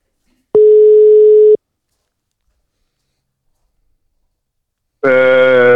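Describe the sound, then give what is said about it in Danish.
A telephone ringback tone on an outgoing call placed by the hosts of a Danish show about Porsche cars: one steady, clear beep lasting about a second, a long pause of silence, then a second, buzzier ring burst that cuts off at the end. “Jamen Jesper, vi har lige snakket sammen, og nu har vi aftalt, nu ringer jeg op, fordi du er jo sidste mand i pølse enden.”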